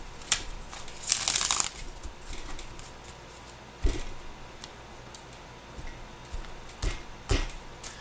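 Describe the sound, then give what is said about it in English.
Shuffling of a deck of tarot cards for a reading: one dense riffling burst early on, followed by scattered soft taps, flicks and slides over a quiet background, with no voices. “Go ahead and shuffle.”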